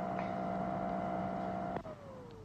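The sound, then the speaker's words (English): A vacuum cleaner drones loudly with a steady whining hum, then a click sounds as it is switched off and the motor's pitch slides downward as it winds off. No one speaks. “That's why he kept the vacuum on, so we shouldn't hear her.”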